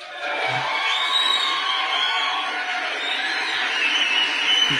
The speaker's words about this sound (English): Round of applause. Okay. Oh, he went the horns. My bad. I'm pressing all the buttons. Hold on. Here we go. This is the one we need.